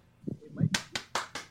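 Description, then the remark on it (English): A brief murmur of voice, then four sharp handclaps in a quick, slightly uneven rhythm, a short burst of applause from what sounds like a single person. “Resounding applause.”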